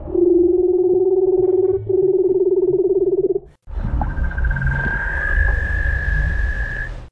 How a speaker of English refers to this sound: This is what a leopard seal sounds like. Admittedly, it does not sound scary, unless perhaps you are a small fish.